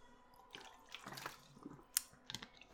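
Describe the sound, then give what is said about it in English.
Someone takes a few quiet swallows from a very large bottle of water, about the size of a thigh, with soft gulps, wet mouth clicks and a sharp tick partway through. No one speaks. “I'm gonna drink from my Sahara-sized bottle of water.”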